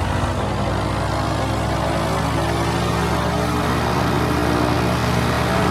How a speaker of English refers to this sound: Cessna 9130 Delta, make right, close traffic. Runway 11 clear for takeoff.